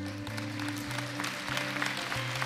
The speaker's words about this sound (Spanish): Ven acá, démosle un aplauso a este hombre.